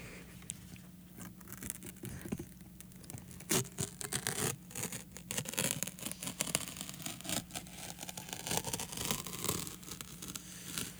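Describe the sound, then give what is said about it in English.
A piece of paper is torn slowly, a long series of crackling, scratchy rips and bursts that continue for about eleven seconds with no talking. “And to celebrate, I'd like to tear this piece of paper.”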